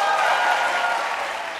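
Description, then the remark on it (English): An audience bursts into steady, dense applause as an unscientific poll of how many people know exactly who they will caucus for on Monday. It is a sustained wash of many hands clapping at fairly constant loudness that eases slightly toward the end. “I don't want to do it candidate by candidate, but by round of applause, how many people here know exactly who they're going to caucus for on Monday?”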